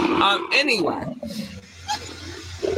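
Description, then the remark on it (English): A person imitates a big cat's roar with a loud, growling voiced burst lasting about a second, then trails off into quieter breathy vocal sounds. “I feel like, should it be the purr or the roar?”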